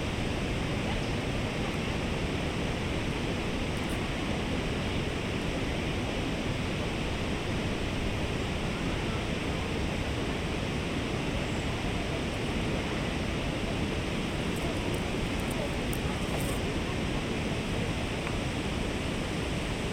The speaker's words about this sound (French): Devant vous, vous entendez le rugissement des chutes Cameron. L'eau dégringole des rochers, se jetant furieusement d'une roche à l'autre.